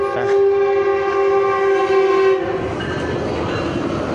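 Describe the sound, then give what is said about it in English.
A train passes nearby, its horn sounding a loud sustained harmonic blast for about two seconds before fading into the rumble and rush of rail cars rolling by, with no talking. “We're near the train right now.”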